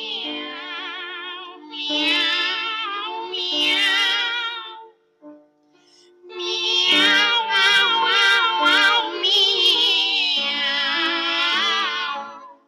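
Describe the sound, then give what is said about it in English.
Two operatic voices sing Rossini's duet for two cats, drawn-out, meowing phrases with rich vibrato. The voices trade and overlap in loud passages, broken by a brief pause midway. “But eventually, Rossini did write a duet for two cats.”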